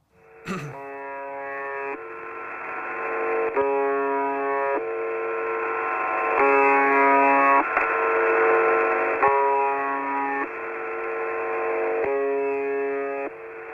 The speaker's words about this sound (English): So it does this indefinitely, and then after so many times that buzzes or makes the sound, you'll hear somebody speaking in Russian and they'll do like a countdown of numbers.